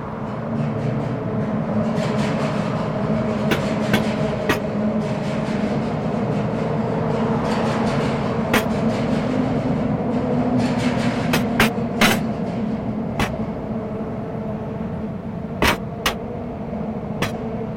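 A train rumbles steadily past for the whole stretch, with a deep continuous roar and sharp metallic clacks and squeals from the wheels scattered throughout. No one speaks.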